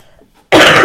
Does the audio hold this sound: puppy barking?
no